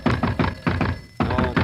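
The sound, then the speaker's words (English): A series of firm, hollow knocks on a door, about four quick raps, a brief pause, then three more, with no voices. “There's the door, and there's the phone in the other room.”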